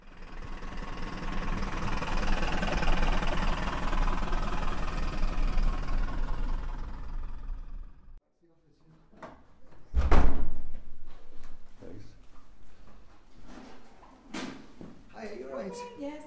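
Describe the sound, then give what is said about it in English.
An old bus engine idles with a steady, loud, rumbling drone for several seconds, then cuts to near silence before a door shuts with a heavy thud, followed by scattered clunks and murmuring voices. “So how often do you drive the old bus then?”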